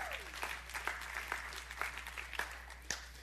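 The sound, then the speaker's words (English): A group claps in a church, with steady overlapping applause punctuated by a few sharper, louder claps. The sound is moderately loud and there is no talking. “It's easy to clap when we're sitting in church and we haven't gotten the phone call yet.”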